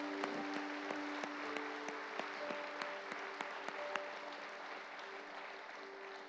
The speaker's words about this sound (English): Church, would you give the Lord a hand clap for those who made that decision today?